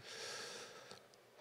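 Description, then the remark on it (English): A breathy rush of air drawn in steadily for about a second, soft and airy, then trailing off into quiet. A slow, deep inhale with no talking, taken while practising a breath prayer. “But I invite you to inhale the word God.”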